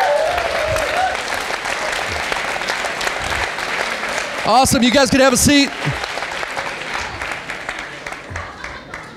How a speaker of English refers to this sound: Hey, everybody look around the room. This is our global conference as a movement, and this is our future. This is our future, let's give them applause.